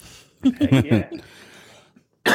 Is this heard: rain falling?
no